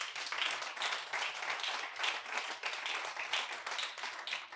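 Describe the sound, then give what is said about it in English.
A crowd applauds steadily, many hands clapping in a dense, continuous wash with a steady level and no clear pauses. No one speaks over it. It is a round of applause for God, given in the morning. “Can you give God a round of applause this morning?”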